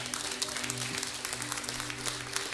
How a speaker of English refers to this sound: Someone give God a hand clap for that.